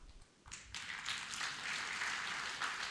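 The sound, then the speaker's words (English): Members of a health community group break into applause for themselves after a brief pause, a dense, steady wash of many hands clapping that holds at an even level to the end. No one speaks over it. “You should give all of you guys a clap for yourself.”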